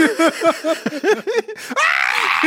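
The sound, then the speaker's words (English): A voice imitates a scream, starting with a burst of quick, wavering vocal yelps, then holding one loud, steady, high-pitched scream that stays level without rising until the end. “But it's like a steady, like pitched scream. It doesn't inflate.”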